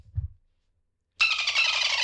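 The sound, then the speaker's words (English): A couple of soft low thumps, a brief silence, then a loud, sustained high-pitched dolphin squeal sound effect with a bright, buzzy harmonic texture that runs for almost a second. “You're killing me with these sound effects”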